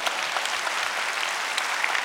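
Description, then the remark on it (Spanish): An audience breaks into steady, dense applause for Christ, many hands clapping together in a continuous even roar with a few sharper claps standing out. “Dar un aplauso a Cristo.”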